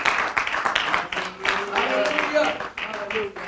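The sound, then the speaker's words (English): A church audience claps their hands to the Lord during morning worship before being seated, a dense, steady wash of applause lasting a few seconds, with voices calling out beneath the clapping. “Why don't we clap our hands to the Lord one more time before we're seated this morning.”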